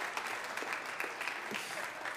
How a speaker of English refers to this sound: Let's give these people a round of applause.